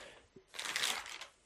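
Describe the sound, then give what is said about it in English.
Crisp paper rustling and crinkling, a burst of bright crackly handling lasting about a second after a small tap, with no voices present. “cut out my paper rustling and come back in 3, 2, 1.”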